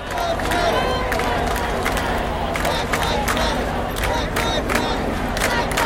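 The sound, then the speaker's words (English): A large crowd at an outdoor protest shouts together in a dense, continuous roar, with overlapping voices and sharp bursts of yelling rising above the steady, loud din throughout. “At least this was outdoors on the one hand, but disease transmission by droplets can happen when you're shouting, like this.”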